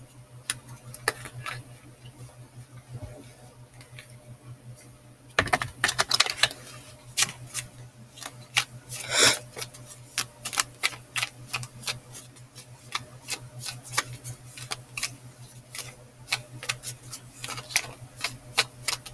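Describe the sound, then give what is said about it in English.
Tarot cards being shuffled for a love reading, a steady run of crisp clicks and soft flutters that grows busier partway through, with a faint low hum underneath and no voices. “Alright, so right now I'm just shuffling.”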